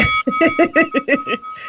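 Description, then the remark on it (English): A bicycle bell rings in a quick, even burst of about seven metallic dings, fairly loud, its bright tone lingering between strikes, with no one talking over it. “Can you hear it? Bicycle bell.”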